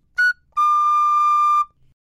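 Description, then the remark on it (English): A simple six-hole tin whistle plays two clear notes: a short, higher note, then a longer sustained lower one with a slight bend at the end, heard alone. “Because the tin whistle is so simple, there are six holes, but it falls to the musician to allow the music to find its voice by passing through the player.”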